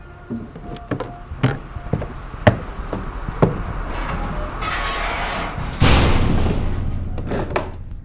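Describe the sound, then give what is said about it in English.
A heavy wooden sidewalk cellar door leading under a restaurant is handled and shut: a run of sharp knocks and clunks, then a louder thud with a rough, rumbling scrape that trails off, with no voices. “Close the door behind you if you don't mind.”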